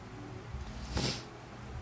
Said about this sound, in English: I'm yawning.